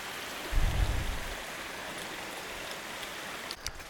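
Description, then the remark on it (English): A creek beside a hiking trail flows steadily, its water making a continuous broad rushing hiss that stays even throughout, with a brief low rumble near the start and no voices. “This stretch is a bit muddy, because apparently this entire part drains towards that creek.”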